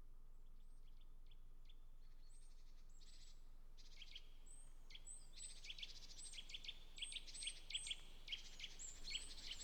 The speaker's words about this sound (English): Hear that, folks? Birds. The sun is rising.